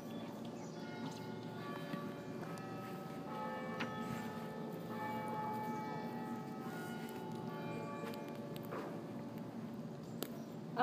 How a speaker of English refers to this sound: And maybe let us just listen to the bells mm-hmm. for a moment.